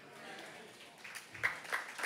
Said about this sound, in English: Goes on to say, you're clapping, keep clapping because, you know, I just need you to, hope you're clapping in 5 minutes from now.